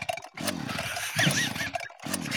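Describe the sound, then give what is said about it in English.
A cat named Ralph purrs in a steady, low, rumbling rhythm, each buzzing stretch rising and falling with its breath across three cycles, fairly loud, with no talking. “He's done. He's purring.”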